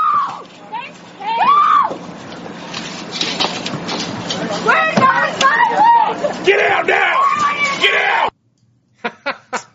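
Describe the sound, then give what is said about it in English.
Climate activists at a highway roadblock shriek and yell frantically over one another as Nevada tribal police blast through, loud, with high piercing screams rising above the chaos before it cuts off, followed by a few sharp bursts. “Could hear the shrieking.”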